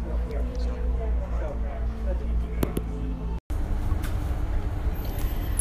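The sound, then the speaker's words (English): A steady, loud low engine drone and road rumble fill the inside of a moving city bus at 5:36 p.m. as it heads home, with faint indistinct voices in the background and a brief dropout midway. “It is 5:36 p.m., and I just got on the bus, and I'm going straight home.”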